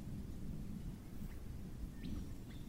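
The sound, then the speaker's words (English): Steady rain falls in Darwin with a deep, continuous rumble of thunder rolling underneath, dense low-end noise throughout, and a couple of faint bird chirps breaking through near the end. No one speaks. “And then the rain brings a healing touch of relief across a parched landscape.”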